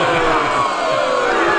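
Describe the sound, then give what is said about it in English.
A huge stadium crowd boos in one loud, unbroken roar, a sustained low droning jeer that holds steady without pause for the whole stretch. “Man, this boo is the longest boo ever.”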